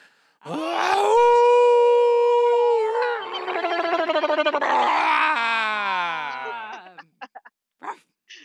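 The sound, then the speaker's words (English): Several people howl together in a loud, sustained group chorus of overlapping wavering voices lasting several seconds, breaking into a few short yips and whoops at the end. “If you're in a place right now where this is too embarrassing, just put the podcast on pause for a second and wait until you get someplace where you can either howl or yip or ululate along with us.”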